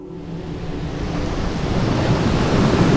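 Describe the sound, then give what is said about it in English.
Stormy ocean surf roars with gusting wind as a ship at sea is hit by a blizzard: a dense, continuous wash that gradually swells louder over a few seconds, with a low rumble underneath and no voices. “The ship was hit by a blizzard.”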